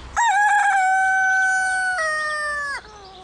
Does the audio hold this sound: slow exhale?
no